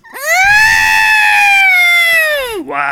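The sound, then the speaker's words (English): A person's voice imitates R2-D2's electronic scream: one loud, sustained, shrill wail that swoops up sharply, holds steady for about two seconds, then drops away at the end. “I love that scream that R2 does. Let me see if I can do it.”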